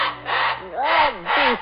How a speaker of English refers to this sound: You must forgive my pet bird, Mr. Cranston. He still thinks he is on the island.